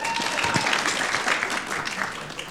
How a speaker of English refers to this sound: She actually was not meant to do anything in this service, and we've chucked her in the deep end, so give her a quick round of applause.